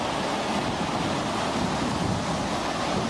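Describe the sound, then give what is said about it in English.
A roaring, continuous wash of stormy sea: heavy waves and gusting wind blend into a dense, loud rumble with no pauses and no voices. “This is the context that we're in. It's this kind of storm, right?”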